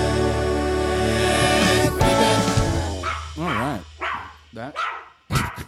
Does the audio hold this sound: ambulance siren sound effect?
no